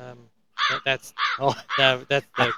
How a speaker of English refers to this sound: That's the crow one again. Well, the thing is, I love that one.